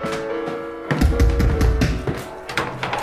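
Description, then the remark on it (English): Three knocks on a door, spaced about a second apart, cut through steady music playing in the background. The knocks are fairly loud and sharp but partly blended with the music. “my God, I have been knocking forever. Three knocks is not forever”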